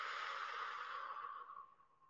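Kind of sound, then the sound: human body sound, deep breath in nose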